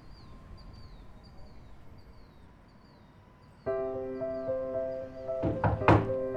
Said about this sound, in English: There is someone at the door. Yes, Rexa, I know what a doorbell means.